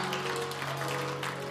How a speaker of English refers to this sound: Thankful for what I feel in the house of the Lord tonight. How about you? Come on, let's give Him one more hand clap of praise in this house tonight. God's good.